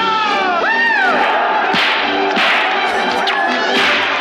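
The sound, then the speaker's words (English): Several sharp whip cracks snap out amid a noisy film fight scene as the character called the Gay Blade whips people, with a crowd shouting and yelling continuously in the background and a brief rising cry early on. “They call him the Gay Blade, and he's whipping the shit out of people. He has a whip.”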